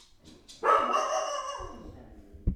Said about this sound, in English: It's my dog. It's outside. He's just gonna stay out there.